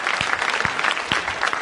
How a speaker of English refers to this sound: Oh, y'all need to be clapping your hands for the Lord right there.